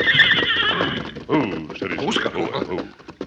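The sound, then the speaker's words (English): The stallion Silver whinnies a low warning after catching the scent of men and horses, a loud, wavering neigh that rises and falls for a few seconds before trailing off into softer snorting sounds. “Sensing danger, he broke his stride and whinnied a low warning.”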